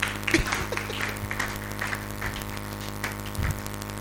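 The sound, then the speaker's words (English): A crowd claps steadily for the speaker's wife, a dense patter of many hands forming a continuous wash of applause at moderate loudness, with faint voices mixed in underneath. “Clap for my wife.”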